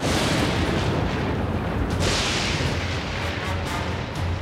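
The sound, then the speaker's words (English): A great lightning bolt from a storm strikes the ground with a loud, sustained crackling roar, heavy low rumble underneath and sharp snaps breaking through for several seconds, with no voices. “As a great lightning bolt hit the ground behind her, she shrieked, diving to take cover in the boulders of the Valkyrie nest.”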